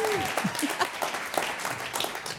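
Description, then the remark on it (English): An audience claps steadily, a dense patter of many hands sustained at an even level throughout, with faint cheering or voices mixed in beneath the clapping. “I got all just, the applause, I'm just the guy that like you invite to the party because you feel guilty, right?”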